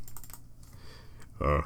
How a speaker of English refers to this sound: Excuse the typing on the keyboard if it is too loud.